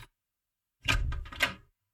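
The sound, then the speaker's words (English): A short cluster of soft knocks on a chamber door, muffled, lasting about a second after a moment of silence, with no voices. “There's someone gently rapping on my chamber door.”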